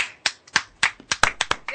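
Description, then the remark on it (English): A short burst of hand clapping, about eight sharp, bright claps in a loose, slightly quickening rhythm, with a brief voice sounding near the end. “you got an applause or something? I was now, that clapping.”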